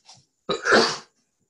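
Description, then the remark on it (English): A single loud sneeze: a brief sharp intake of breath, a short pause, then an explosive burst of air that fades within half a second. No one speaks. “I'm going to sneeze.”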